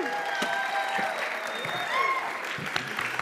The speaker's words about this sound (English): I know you guys are thankful that he's here. So give him a big, huge round of applause,